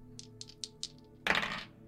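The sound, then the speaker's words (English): A series of quick, light plastic clicks, followed by a louder clattering rattle as white dice tumble across a hard tabletop and settle, clear with no talking; four dice are rolled for perception checks, landing 1, 2, 4 and 6. “White dice hate me. I rolled a 1, 2, 4, and 6.”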